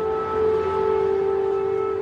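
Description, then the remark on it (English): An air raid siren wails in a long, steady tone with strong harmonics, holding loud and unbroken over a faint background rumble, with no voices present. “Then the sirens go off.”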